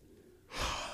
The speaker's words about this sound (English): Big old yawn there, boy. That's a big boy yawn.